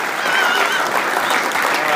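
A steady round of applause from a crowd for an award winner, dense clapping that stays loud and even for the full two seconds with no pauses or voices standing out.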